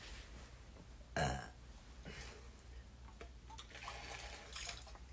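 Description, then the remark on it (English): A single loud burp erupts briefly early on, followed by several seconds of quiet with faint, scattered background noises. “I don't apologize for burping.”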